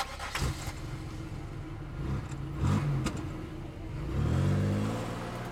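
A car engine turns over and idles with a low, steady rumble, then revs up as the vehicle pulls away, its pitch climbing near the end. Fairly loud, with no voices.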